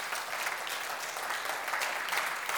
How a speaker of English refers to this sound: And everybody says, amen. Amen. Let's give the Lord a great clap offering. Amen.